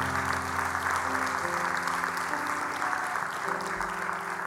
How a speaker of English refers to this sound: Can you give the Lord a hand clap if you received the teaching this morning?